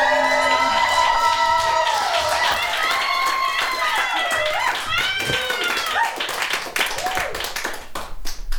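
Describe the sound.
A crowd applauds steadily with dense, rapid clapping while several voices whoop and cheer in rising and falling high-pitched calls, the cheering fading toward the end as the clapping continues.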